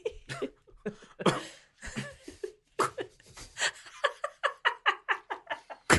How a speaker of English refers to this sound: However, sorry. It's a few convulsions. Sorry, I was trying to hold in a cough.